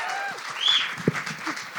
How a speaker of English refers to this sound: Would you please give a huge round of applause from the Irish Passport amazing podcasters